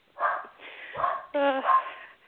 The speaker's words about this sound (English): And they are very small dash hounds, wiener dogs, if you don't know, but they've got the biggest little barks.